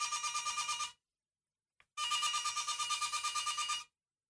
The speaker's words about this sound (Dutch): Wat is dit? Is dit een telefoon die overgaat?